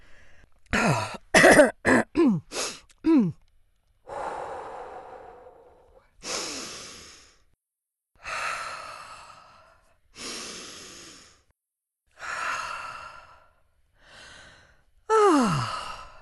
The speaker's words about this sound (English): Yes, that feels good. Breathing. Keep breathing. Breathing to living.